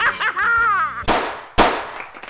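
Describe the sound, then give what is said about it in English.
Two sharp, loud gunshot sound effects of one person shooting another, about half a second apart, each with a quick decaying tail, follow a brief wavering tonal sound at the start. “Well, if no one cares, how come there's a sound effect of applause playing right after the sound effect of me shooting you?”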